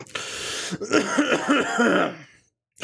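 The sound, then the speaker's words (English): A loud cough: a sharp burst followed by a longer, rough and strained throaty fit, then silence before another brief burst at the end. No talking. “I probably shouldn't cough in these times.”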